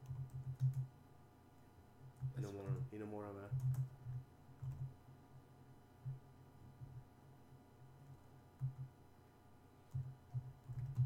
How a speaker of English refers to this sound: I'm having a hard time typing.